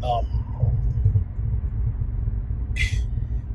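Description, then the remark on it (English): A steady low road rumble fills the inside of a moving car, broad and continuous, with a brief brighter hiss and a faint higher tone breaking through near the end. “if it's kind of loud in the car, I apologize, but I know you can hear me.”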